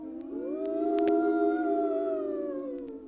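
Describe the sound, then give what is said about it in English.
Voices imitate a Halloween ghost howl, a long, steady, wavering "oooo" held for about three seconds, swelling slightly in the middle and fading at the end, fairly loud. “Be ghosts for me.”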